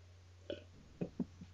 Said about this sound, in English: now I've got the hiccups all of a sudden. I was wondering what was going on.